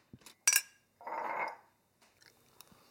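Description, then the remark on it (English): A spoon clinks sharply against a tiny opened tin of spaghetti hoops, followed by a soft, wet scraping as the cold hoops are scooped out, then a few faint taps and clicks of eating. “I've just taken the top off a tiny little tin of spaghetti hoops and I'm eating them cold with a spoon.”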